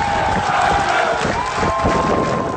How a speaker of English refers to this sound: As he walks down by himself after being fired for trying to save their lives, they're cheering for their hero that led them.